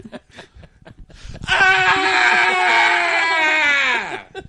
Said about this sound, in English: He just screamed to show us he has feelings.